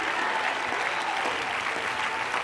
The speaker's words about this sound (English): Somebody clap your hands right now and celebrate, because something is getting ready to happen.